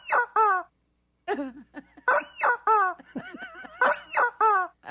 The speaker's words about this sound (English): That's enough. That's enough rubber chicken. That's all the power we need right now.